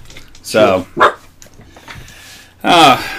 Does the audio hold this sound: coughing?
no